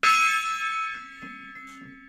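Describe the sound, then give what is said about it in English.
A single gong strike with a sharp, bright attack, its metallic overtones ringing out and slowly fading over two seconds, with faint low rumbles in the background. “We have a gong.”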